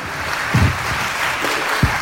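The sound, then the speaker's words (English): A crowd applauds in a steady wash of clapping, moderately loud, with a few sharper individual claps standing out near the middle and end. “Please hold your applause.”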